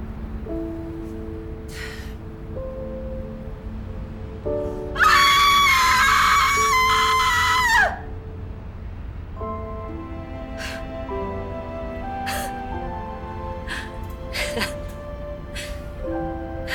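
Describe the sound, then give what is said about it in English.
A loud, sustained human scream, a person screaming out pent-up emotion, bursts out for about three seconds, raw and piercing, then cuts off, leaving a quieter background of soft tonal sounds before and after. “Take everything that is pent up inside and scream it out.”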